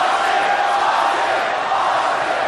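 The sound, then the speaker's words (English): A large wrestling arena crowd roars and chants for Stone Cold Steve Austin, a loud, dense, continuous wall of voices that holds steady for a few seconds without pause. “He's chanting for Stone Cold here.”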